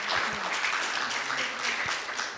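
Steady crowd applause fills the space, a dense wash of many hands clapping at once, sustained and fairly loud with no gaps.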